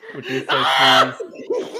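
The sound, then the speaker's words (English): A loud, piercing scream bursts out from a voice for about half a second, framed by shorter excited vocal sounds, almost like laughter, just before and after. “just screamed out all our apologize to anybody who was wearing headphones at that time.”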